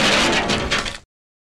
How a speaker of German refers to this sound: Und das war dann der Flugzeugabsturz.